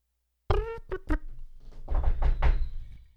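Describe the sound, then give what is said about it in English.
Loud typing on a phone: three sharp, ringing taps in quick succession, then a brief burst of rapid, clattering taps that fades out. No one speaks. “Man, your phone types loud nowadays.”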